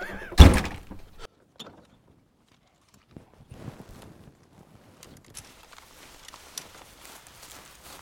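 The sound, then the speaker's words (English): A single heavy truck door thunks shut as someone gets out of the truck, followed by quiet scattered shuffling and light movement sounds. No one speaks. “Oh, dude, my back hurts so bad getting out of this truck.”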